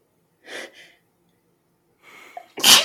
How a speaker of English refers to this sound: Hold on, I'm about to sneeze.